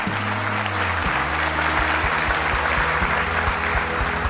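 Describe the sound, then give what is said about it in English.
Steady audience applause thanking people who came up, a dense continuous patter of many hands clapping at an even level, with low sustained tones running underneath throughout. “Let's thank these folks for coming up.”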